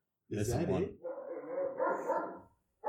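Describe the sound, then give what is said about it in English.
A dog barks in a loud, harsh burst, then a sustained, wavering yowling or whining follows, with voices mixed in around it. “What is wrong with your dogs? They're fucking crazy.”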